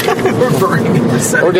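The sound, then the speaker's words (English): A voice talks over the steady, even rumble and hiss of a moving car's interior, recorded on an iPhone, the road noise continuous and fairly loud beneath the speech. “And yes, this is being recorded on an iPhone in a moving car, and it's pretty, I got to say, iPhone, at least that's one thing they're doing pretty good, is the microphone in this.”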